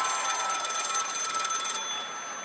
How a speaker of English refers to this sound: Oh my God, it's ringing. Oh my God, it's a call.